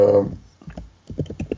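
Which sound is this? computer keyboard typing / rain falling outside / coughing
computer keyboard typing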